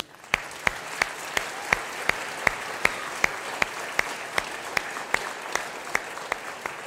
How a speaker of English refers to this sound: For those of you that are usually down in the children's building in the nursery, or over with the students, or leading a life group, can we take a moment right now with applause and thank them for what they do?